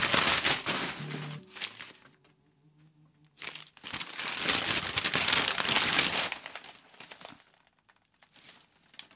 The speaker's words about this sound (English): This I'm so excited about. Now, maybe I won't talk as I'm unwrapping.